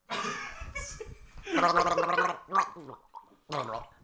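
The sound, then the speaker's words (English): Someone gargles a mouthful of about half a glass of water, voicing through it in several bubbly, warbling bursts with short pauses between, trying to sing the first notes of Silent Night while gargling. “Little gulp, and then puts half the glass of water into his mouth.”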